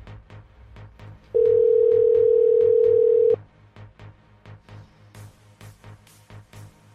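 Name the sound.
telephone ringing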